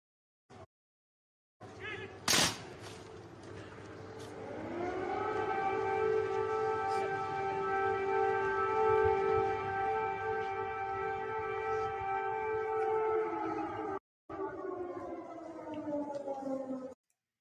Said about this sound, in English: So that was the sound of air raid sirens going off in Kyiv as Biden arrived. So that's how they welcomed him to Kyiv. They welcomed Biden with an air raid siren.